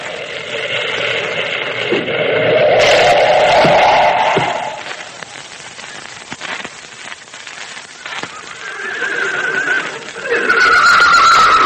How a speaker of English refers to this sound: All right, men, hold up. This is the base of the mountain. Hey, look, Tex. Moccasin's horse, Rainbow, stopped at this spot.